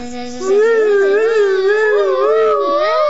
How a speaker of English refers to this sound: I need to have the time machine sound effects, please.